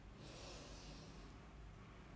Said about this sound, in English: So let's do our box breathing. If you're new here, just follow along. So take a deep breath in for 4 seconds.